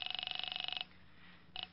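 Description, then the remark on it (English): A telephone rings over the line as an operator connects a call to a police precinct station: a rapid trilling ring lasting most of a second, a short pause, then the start of another thin ring. “I'm ringing.”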